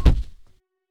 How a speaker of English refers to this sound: Something heavy hit the floor so hard Owen could feel the vibration through his feet.